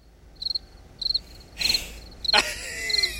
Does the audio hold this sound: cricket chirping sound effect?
yes